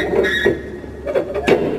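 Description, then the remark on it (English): The rusty door of a bunker built for President Kennedy, on an island near West Palm Beach, creaks open with a thin, high squeal, broken by several dull metallic knocks and scrapes as it moves in uneven jerks. “And this is opening up the door.”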